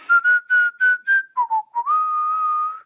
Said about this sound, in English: So, yeah, I'll just whistle it every day when we start.